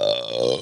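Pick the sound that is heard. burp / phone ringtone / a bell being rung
burp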